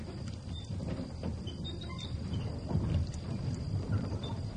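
A crude animal-driven irrigation water wheel about 200 yards away turning, a steady low rumbling churn with faint irregular knocks and clip-clop-like thuds, sounding alone without any voices.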